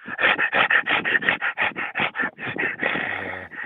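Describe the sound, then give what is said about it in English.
A person imitates a dog panting, producing a rapid, steady series of about fifteen loud, raspy breaths in quick rhythm, with no talking. “Like a dog. Panting.”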